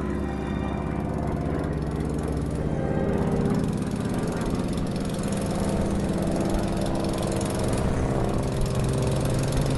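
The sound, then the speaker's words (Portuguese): Heavy propeller engines of a B-29 bomber drone steadily in flight over Japanese territory on 9 August 1945, a loud, continuous low rumble with a throbbing hum that holds even throughout, with no voices. “9 de agosto de 1945, a bordo de um avião bombardeiro B-29, o Major Charles Sweeney sobrevoou o território japonês.”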